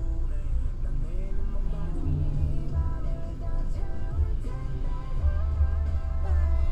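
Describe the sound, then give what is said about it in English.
A steady, heavy low-end rumble of a car interior moving in traffic near a stop sign, with constant road and engine drone and faint muffled voices or tones drifting underneath. “Why is it always traffic in this part? It's just a stop sign.”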